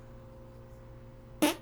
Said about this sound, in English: Did you hear that? What, did you fart? Was that a real fart? Yeah. Wow. You're the host today, and you blew a fart. And by the way, that was really a fart?